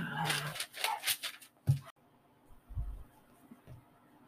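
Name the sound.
dogs barking excitedly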